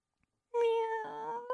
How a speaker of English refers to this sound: Meow. That was about to meow.